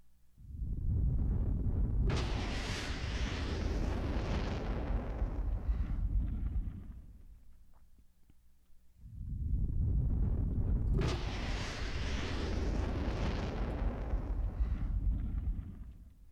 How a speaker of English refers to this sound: All right, then I found some kind of bursts of flame.